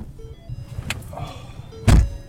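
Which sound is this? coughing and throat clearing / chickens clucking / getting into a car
getting into a car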